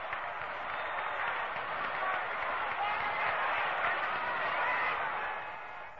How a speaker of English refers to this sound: And the crowd once again is up on its feet cheering.